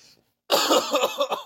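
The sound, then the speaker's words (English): A person coughs and sputters in a loud burst lasting about a second, with rough, choking bursts after a brief silence, after swallowing aloe water wrong and a chunk going down the throat. “Oh my God, one of the chunks went down my throat.”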